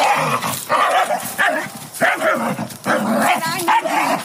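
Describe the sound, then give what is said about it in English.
A dog barks loudly in a rapid, agitated string of barks and yips, with hardly a pause across the few seconds. “You get your dog away from mine.”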